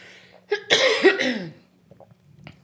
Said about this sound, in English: And that's where, sorry, I have what Nick refers to the 100-day cough after COVID.